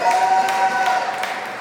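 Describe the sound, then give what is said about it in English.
An audience claps at a mention of the film Top Gun in a steady, dense wash of applause that stays fairly even in loudness, with a few sharper bursts standing out. No one speaks over it. “It's sad to me that you would clap more for Top Gun than you would for his presence, but that's fine.”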